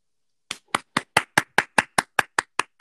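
A single pair of hands claps about twelve times in a quick, steady rhythm, each clap a sharp, crisp smack with no voices or other sounds around it.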